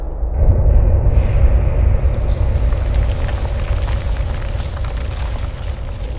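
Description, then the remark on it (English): A massive explosion in a mine: a deep, powerful blast bursts in suddenly and then rolls on as a long, heavy rumble with crackling debris, loud, fading only slightly over several seconds. “A massive explosion rocked the mines, burying alive those who hadn't already fallen victim to the Wendigo's wrath.”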